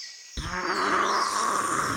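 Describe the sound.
A child from Malaysia imitates a cheetah call: after a brief silence, a loud, raspy, roar-like cry starts abruptly and holds steady with a slightly wavering pitch to the end.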